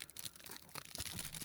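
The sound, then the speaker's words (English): Aluminum foil wrapper of a Crunky candy bar crinkling quietly as it is opened, for a second and a half, a continuous stream of soft, crisp crackles and rustles with a few sharper crunchy bursts, with no one talking. “Oh, that's the aluminum foil.”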